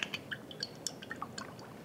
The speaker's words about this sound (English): So I will drizzle some olive oil on the baking sheet.